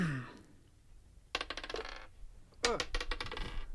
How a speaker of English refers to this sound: And you guys both give me perception checks. So roll me a d20 plus your perception.